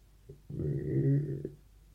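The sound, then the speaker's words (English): A stomach rumbles once in a low, drawn-out gurgle lasting about a second, swelling slightly in the middle before cutting off, with no one speaking. “My stomach's making some weird noises.”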